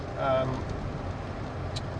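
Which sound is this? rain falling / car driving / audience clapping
car driving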